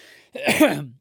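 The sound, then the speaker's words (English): A single rough, throaty cough with a short breathy onset, fairly loud and raspy, standing alone with no talking. “But sorry, folks, I've got a little bit of a frog in my throat for the past week or so, so I'm just coughing through my sentences.”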